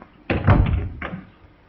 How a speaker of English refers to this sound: steps through the door with the newspaper.